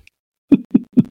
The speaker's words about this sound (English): Are they still slamming away up there? Yeah, I hear some footsteps upstairs.